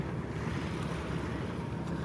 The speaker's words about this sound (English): So even though I'd like to walk away from that drone of Washington State Ferry you hear over there